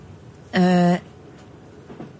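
A single short, loud horn blast from a passing train, steady and buzzy, lasting about half a second, then fading back to a quiet background hum.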